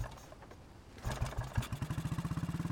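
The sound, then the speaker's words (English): After about a second of near silence, a motorcycle engine cranks and catches, then settles into a loud, rapid chugging that quickens slightly as it revs. No voices. “Ethan straddled the seat of the spare motorcycle and revved the engine to life.”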